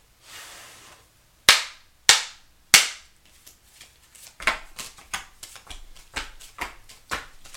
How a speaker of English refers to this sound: And then, if needed, I have a clarification tarot deck. But I haven't had to use it, though. And I'll use that if needed. Which, I'm finishing the pre-shuffle on the clarification deck right now.